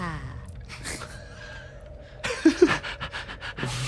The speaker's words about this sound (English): This wolf just comes panting up out of the same hole. Yeah, just like kind of see it kind of grab onto the edge a little bit. Like, it kind of struggles. It's kicking its bottom legs right. to like yeah. push itself up.